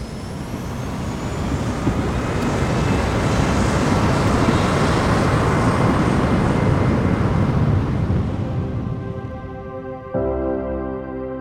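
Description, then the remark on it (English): A powerful, steady roar of jet engines builds and holds as an airplane accelerates for takeoff, heard from inside the cabin, then eases into a lower humming drone near the end. “Flight attendants, please prepare for takeoff.”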